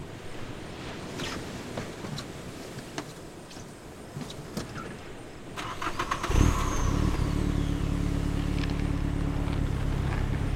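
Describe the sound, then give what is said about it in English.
A car stuck in sand on a beach: its engine cranks and catches, then revs steadily with a low, sustained rumble, preceded by faint rustling and clicks; no one speaks. “The car was working fine. What's happening? It's in the sand. We're stuck in the sand.”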